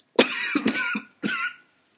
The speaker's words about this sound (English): You have to excuse me, I've had a cough recently.